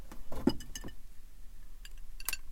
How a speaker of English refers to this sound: I need to take a sip.